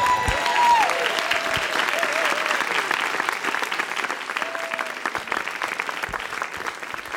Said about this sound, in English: Point is, I should have ended on the this is me, because you like clapped and that was it. So thank you.